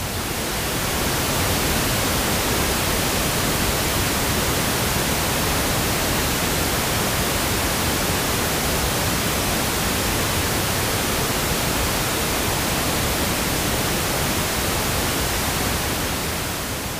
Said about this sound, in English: This is pink noise.